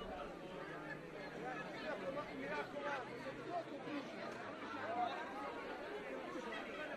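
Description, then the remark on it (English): A crowd expecting the death of Jesus murmurs and chatters steadily, overlapping voices blending into an indistinct babble with no single words standing out, holding an even, moderate level throughout. “Some of the crowd has dissipated, yet there seems to be an intensity as they're expecting the death of Jesus.”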